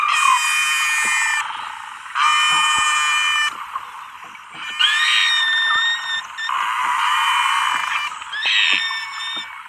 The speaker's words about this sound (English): Dr. Ridgway doesn't argue that Noce is saying real words, but these noises are very different from normal beluga songs.